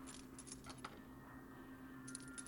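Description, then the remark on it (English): Keys jangle in short metallic bursts in a touchscreen puzzle game after the keys are double-tapped, a quick cluster at the start and another near the end, over a steady low hum with no one talking. “Double tap on keys or door. I've already done that. Keys.”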